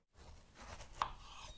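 Soft, scratchy cutting textures on a board as vegetables are chopped for a soup, broken by one sharp, crisp chop partway through. Quiet, with no voices.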